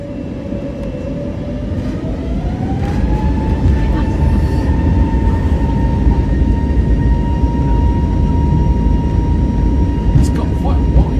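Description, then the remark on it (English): Aircraft engines on a runway roar loudly and steadily, a whining tone climbing in pitch early on as they spool up, then holding a constant drone over deep rumble throughout. “But have a listen to these engines.”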